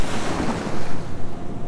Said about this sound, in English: Somehow, I was drifting out towards the back of the surf break. The swell was stronger out here, and I started to be tossed around a little. A few waves broke over my head.